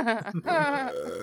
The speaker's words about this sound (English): Could you take a break from the belching and do your job for once?